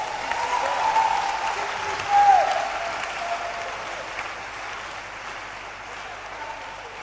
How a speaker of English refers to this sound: You can now clap your hands for Jesus.